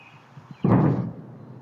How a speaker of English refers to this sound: The jets were authorized to fly at supersonic speed to catch up with the small plane. The jets flew so fast that they broke the sound barrier, causing a sonic boom that was heard all over D.C. and parts of Maryland and Virginia. It sounded like this.